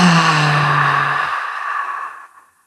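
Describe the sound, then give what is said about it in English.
A single loud, breathy exhale through the mouth after breathing in through the nose, beginning with a low voiced sigh and trailing off into airy breath that fades out after about two seconds, alone. “And then exhaling through your mouth and just really letting everything hang out.”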